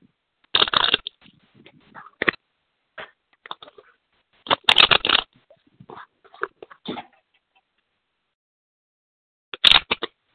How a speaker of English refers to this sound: I want you to tell me when to stop shuffling, okay?